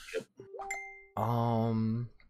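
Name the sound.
phone notification ding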